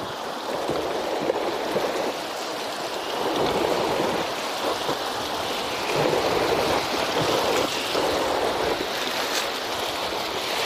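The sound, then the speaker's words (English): A steady rush of river water washes along a boat's hull, a dense, continuous hiss and burble that stays even throughout with no voices. “All right, so I'm gonna hit this slow water over here. It's called an eddy.”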